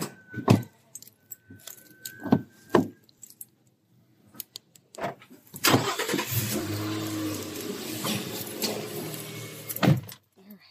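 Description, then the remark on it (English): Keys jangle and a car door thumps shut with a few sharp knocks as someone gets back into the car at 6 o'clock in the morning, then an engine starts and settles into a steady idle before a final clunk near the end. “Back in the car.”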